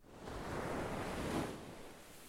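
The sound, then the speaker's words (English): Ocean waves wash onto the shore in a broad, steady hiss of surf that swells for about a second and a half, then eases off. No voices are present. “Time to get your feet wet in the business world and join us down by the water as we have an Oceanside Chat.”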